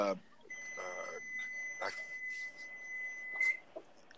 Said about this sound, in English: It's your stove? It's my timer. I'm sorry.